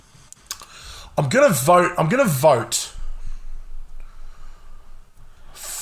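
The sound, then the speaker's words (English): A voice imitates a ticking clock to suggest a brain ticking while thinking, first with a short hummed, sing-song bit, then a steady run of soft, evenly spaced mouth clicks ticking along. “See the brain ticking.”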